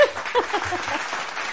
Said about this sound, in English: Where's my clapping? Oh. I can't find it.